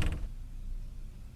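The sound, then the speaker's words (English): An apartment door is pushed open late at night by a person leaning against it, with a brief scraping thud at the start, then a low, quiet room rumble lingers afterward with no voices. “I lean against the door just to open it.”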